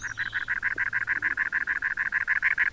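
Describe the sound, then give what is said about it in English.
A cactus wren perched atop a cactus in the American Southwest sings a long, steady series of harsh, gravelly chugging notes, about seven per second, mid-pitched and fairly loud, with no other voices. “Perched atop a cactus in the American Southwest, a strikingly patterned brown bird sings a gravelly refrain.”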